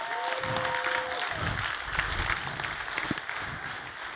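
An audience applauds steadily for about four seconds as a man is invited to come up, a dense, continuous wash of many hands clapping at once, fairly loud, with no one speaking over it.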